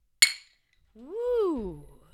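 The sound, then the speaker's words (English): A single crisp, bright clink rings out sharply and decays quickly, followed after a short pause by a drawn-out vocal sound whose pitch rises and then falls. “Crisp little clink there.”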